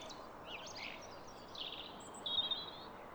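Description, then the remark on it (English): Blackbird song mixed with rooks and robins calling, a string of whistled and chirping phrases over a steady outdoor hiss, a brighter sustained note near the end. “This is quite good because there are a few other birds singing, like, or making noises, like rooks and robins, but you can focus on the blackbird.”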